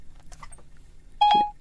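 A short electronic beep from the Siri voice assistant on a phone, sounding after someone says "Hey, Siri." It is a bright tone with layered harmonics, heard once near the end after a few faint clicks, clear.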